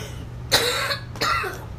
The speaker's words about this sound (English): And I'm coughing again.